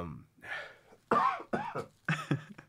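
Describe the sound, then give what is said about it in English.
A series of sharp coughs, about four or five harsh bursts in quick succession with brief pauses between them, loud and near the microphone. “the primary thought that's in the front of my head is like, don't cough directly in this fucking microphone.”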